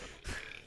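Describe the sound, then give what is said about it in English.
A single short, explosive sneeze bursts out briefly and fairly quietly, a quick breathy blast with no talking around it. “Oh, bless you.”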